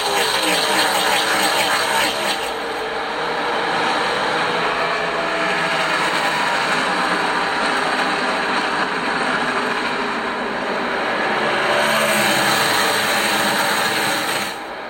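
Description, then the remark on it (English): A dense, continuous roar of many race car engines at full throttle at the start of Sunday's race at Texas Motor Speedway, loud and sustained for the whole stretch, swelling slightly at the start and again near the end. “here's how the beginning of Sunday's race in Texas sounded”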